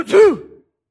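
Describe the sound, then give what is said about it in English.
A single sneeze: a quick breathy burst that snaps into a short voiced, falling "choo," loud at first and fading out within about half a second, followed by silence. “That was a real sneeze.”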